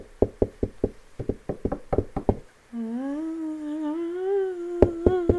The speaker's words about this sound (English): And it's not rare for someone to report hearing knocking sounds coming from within the closet.